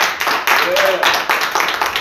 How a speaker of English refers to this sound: Y'all be clapping for me. Y'all need to be clapping for Jesus.